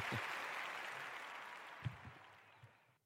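A crowd applauds steadily, a dense wash of clapping that holds for about three seconds with a few louder thumps mixed in, then cuts off abruptly.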